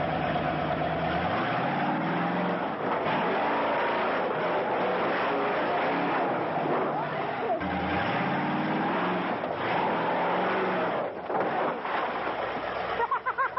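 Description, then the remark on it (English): The Bigfoot monster truck's engine, from the first monster truck video, roars and revs loudly throughout, rising and falling in pitch as it accelerates, with heavy rumbling and faint voices mixed in. “Okay, so let's watch the first monster truck video ever.”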